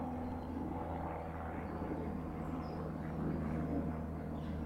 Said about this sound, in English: So the benefit of recording in stereo is that you should be able to hear the helicopter going from one side to the other in your headphones, so that's good.